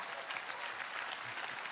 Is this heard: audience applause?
yes